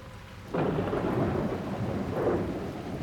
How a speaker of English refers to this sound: There is a thunderstorm brewing, and I'm going home where the lightning can't strike me.